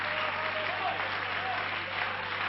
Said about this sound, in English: Praise the Lord, everybody. Why don't we all give the Lord a hand clap of praise tonight?